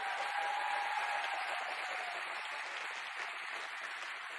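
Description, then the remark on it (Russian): A church audience applauds God steadily, a dense, continuous crackle of many hands clapping at even loudness throughout, with no talking over it. “Давайте Богу дадим аплодисменты.”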